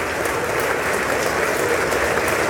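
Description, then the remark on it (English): Members of the House of Representatives applaud Kevin McCarthy's election as Speaker for the 118th Congress. It is steady, dense applause from a large crowd, a continuous wash of many hands clapping at an even, loud level throughout with no pauses or distinct voices. “Getting applause from everybody.”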